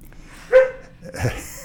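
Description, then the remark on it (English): A dog barks twice in the background, a sharp yap followed by a broader, rougher bark about half a second later, moderately loud in an otherwise quiet room. “I thought, along with the dog barking in the background, maybe we'd talk not about dogs in the office”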